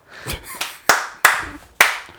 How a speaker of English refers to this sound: Slow clap? Golf clap.